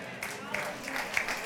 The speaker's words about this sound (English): Now, I hope you're clapping for God, not for me.